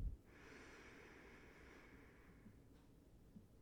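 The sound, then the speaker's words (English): A long, steady inhale drawn in through the nose during a guided deep-breathing exercise, a soft hissing airflow lasting a couple of seconds, fairly quiet, with no talking. “Whatever your item was that you have great faith in, person, place, ideal, religion, God, the universe, let's take 2 more deep breaths surrounding that idea.”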